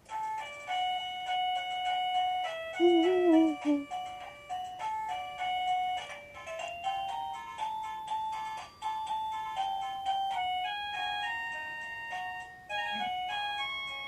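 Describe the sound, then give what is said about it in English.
An electronic doorbell plays one of its 52 selectable melodies, a bright, beeping tune of short stepped notes, running steadily for the whole stretch with a few brief breaks where the tune shifts. No voices are heard. “Now let's say I want to change this melody. And there are 52 to choose from”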